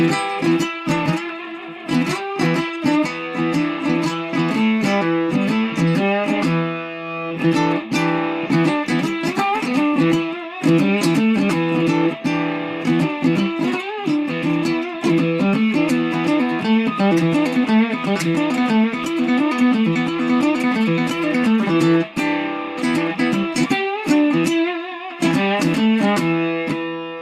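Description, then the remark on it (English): A distorted electric guitar plays a sustained passage full of wild, wobbling vibrato, one note competing with itself on a different string, its notes bending and wavering against each other, loud and steady throughout with no talking. “Get this like wild vibrato. It's not just one note vibrating, it's one note competing with itself on a different string, you know?”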